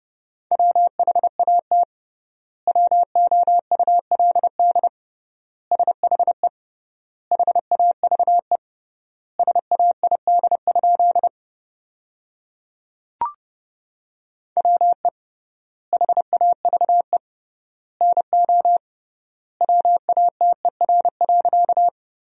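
Rapid Morse code tones at 30 words per minute with triple word spacing, sending sentences built from the 100 most common words: a steady mid-pitched beep keyed into fast bursts of dots and dashes, with long pauses between words and one sharp click partway through.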